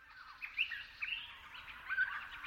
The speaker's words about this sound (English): The alpine forests of Australia's southeast are home to an iconic pint-sized gray parrot with a bright red mohawk, and a call that's been described as a flying creaky gait.